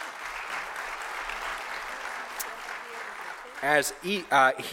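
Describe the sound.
A crowd applauds steadily for a few seconds as a helper comes up to the front, a dense wash of clapping at moderate volume, which fades under a man's voice as he begins speaking near the end.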